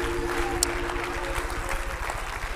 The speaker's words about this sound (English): One more time, let's clap our hands and give God some audible praise. Come on, hallelujah. Oh, praise God.